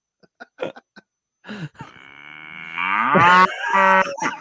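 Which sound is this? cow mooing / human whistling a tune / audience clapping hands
cow mooing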